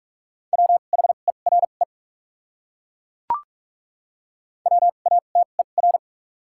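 Two quick bursts of Morse code words from the top 200 words, sent at 45 wpm with double character spacing, rapid short and long beeps on a steady mid-pitched tone, separated by a few seconds of silence broken by a single sharp click.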